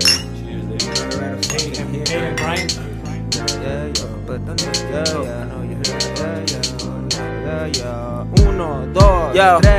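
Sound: glasses clinking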